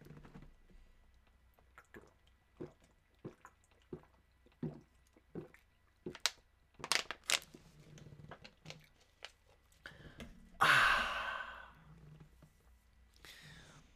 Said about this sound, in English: H2O, baby. I just guzzled down a fucking water bottle.